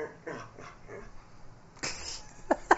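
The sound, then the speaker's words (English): A female dog, Harpo, lets out a string of short, low, gorilla-like grunts, ending with a rougher, louder huff and a final sharp snort. No one speaks. “Is part gorilla. Because those are the noises she makes.”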